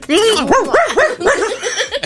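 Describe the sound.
A Shar Pei, the wrinkled dog breed, barks in a quick run of high, loud, yelping barks, with voices talking alongside.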